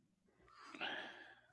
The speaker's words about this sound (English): Snores. Sound of snoring from Canada.